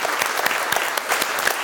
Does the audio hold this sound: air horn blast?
no